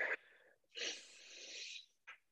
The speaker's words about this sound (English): I was going to invite you to take a moment with me to take a deep breath and pull into the present. So let's do that together.